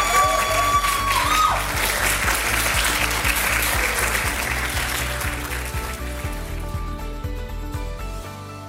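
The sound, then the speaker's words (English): An audience applauds a group of women presenters in a dense, sustained wash of applause that holds strong for several seconds, then gradually thins and fades toward the end, with a brief whistle early on. “can we please get a round of applause for these incredible women?”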